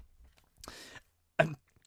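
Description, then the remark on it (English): A stifled, muffled cough: a breathy exhale, then a short, tight burst from the throat, held back rather than let out fully. No one speaks. “I nearly coughed.”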